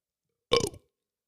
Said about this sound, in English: I've got a burp coming. Let's see.